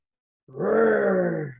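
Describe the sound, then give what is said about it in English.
A person growls out a single drawn-out imitation of a lion's roar, low and raspy, holding steady for about a second before trailing off, preceded by a brief silence. “I will be a lion.”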